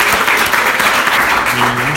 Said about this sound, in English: please give a round of applause to Michael Fox